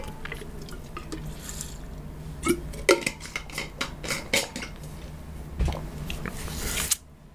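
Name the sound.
drinking water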